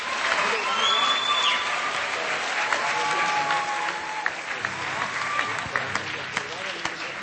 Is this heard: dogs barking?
no